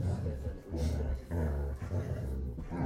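A low, rumbling dog growl carries on steadily for a few seconds, fairly loud, swelling and dipping in gravelly bursts with no clear barks.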